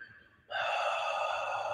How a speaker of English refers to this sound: And just take a deep breath. Exhaling out the mouth.